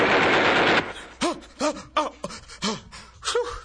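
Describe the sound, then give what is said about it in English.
A loud, dense burst of rapid gunfire lasts under a second, then gives way to a string of short, breathy voiced gasps or pants. “Oh no, I think I hear gunshots.”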